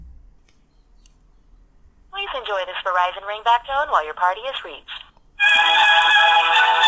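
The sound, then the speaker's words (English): A phone call connects after a short silence: a thin, phone-filtered voice speaks briefly, then a loud, steady Verizon ringback tone with a musical, buzzing quality fills the line to the end. “Enjoy this Verizon ringback tone while your party is reached. Beautiful ringer. Beautiful ringtone that I'm receiving.”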